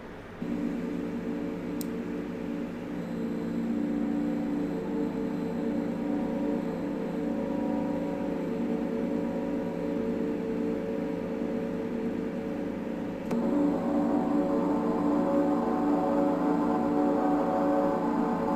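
A gong is struck twice, about thirteen seconds apart, each hit blooming into a thick, shimmering low-mid hum that sustains steadily without fading, the second strike slightly louder.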